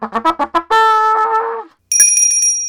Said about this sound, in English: And the bell.